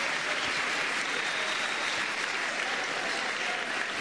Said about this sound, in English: It's an improvement. É uma melhoria. Come on, clap for yourself again. Palmas para você novamente.